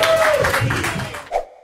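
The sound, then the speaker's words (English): A comedy show audience claps and cheers steadily at a loud level for over a second to welcome comedian Ramsey Badawi, then the applause cuts off abruptly after a final short burst of noise. “Everyone, please clap your hands right now. Make it loud.”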